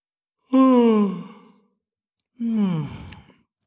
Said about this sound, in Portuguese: abre os olhos, boceja